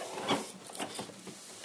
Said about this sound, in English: You can hear those stairs are creaking.